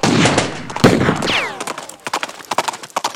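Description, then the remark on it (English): Sharp gunshots crack out amid a thundering rush of galloping hoofbeats on a trail among trees, with a shrill rising yell partway through and scattered bangs continuing over the clatter. “Down the trail, out of sight among the trees, sounded a thundering of hoofs, yells, and shots.”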